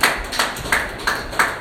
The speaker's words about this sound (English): Yes, clap your hands and do it better for my spiritual father.